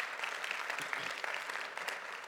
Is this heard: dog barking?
no